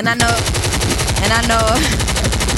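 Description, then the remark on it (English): A loud, unbroken burst of automatic gunfire: rapid, evenly spaced shots rattling for a couple of seconds, with faint vocal sounds mixed in over the barrage. “Choppers.”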